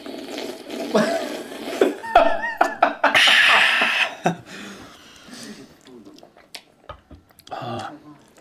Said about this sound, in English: Nothing better than those first couple noisy sips.